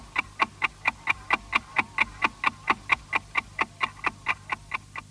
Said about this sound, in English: The good old ticking clock, which was used between 1924, when public broadcasting started in Austria by RAVAG, short for the Radio Traffic Company, up until 1938, when